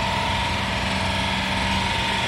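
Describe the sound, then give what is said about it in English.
A Kango hammer breaking ground during night works on Bridge Street in Bandon, going on until 1 a.m., drones on without a break, giving a dense, steady mechanical rattle with a constant tonal hum running through it. It stays loud throughout, and no one speaks. “I played that Kango hammer earlier, a listener who sent this into us, and this is what kept her awake last night.”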